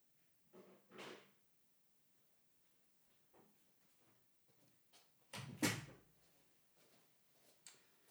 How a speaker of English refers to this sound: Shut the door now as well. That's always a good thing. Keep the noisy rascals away. There we go.